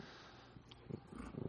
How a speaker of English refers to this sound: Purr.